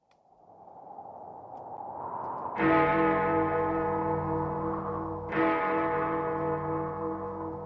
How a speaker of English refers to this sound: The clocks of London are striking 13.